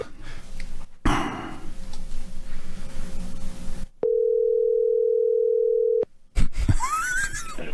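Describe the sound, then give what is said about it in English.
A single two-second telephone ringback tone, a steady electronic purr heard on an outgoing call, sounding clearly after a stretch of rustling noise, then a brief clatter. “It's ringing. That's always a good sign.”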